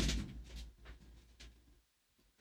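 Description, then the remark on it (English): A door is shut with a soft, low thud at the start, followed by a few faint clicks and rattles as it settles. The rest is quiet, with no one speaking. “Hold on, let me shut this door.”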